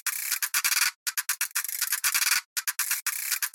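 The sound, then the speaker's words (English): A creaky, worn ratchet, the sound of a wind-up pacemaker, winds up in rapid clusters of dry, rasping clicks, stuttering on and off with short gaps made by a noise gate, bright and scratchy with no voices. “I added a little noise gate to just add a bit of stuttering effect to actually make it feel like the ratchet was quite creaky and a bit worn.”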